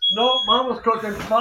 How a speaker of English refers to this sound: No, mama's cooking. I hear the fire alarm.